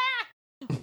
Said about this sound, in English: Can y'all hear my cat on through the mic? Is that a thing that's gonna be picked up? Okay, it's gonna be really funny if it's on the episode because he's just going.